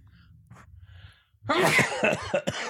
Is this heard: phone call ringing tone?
no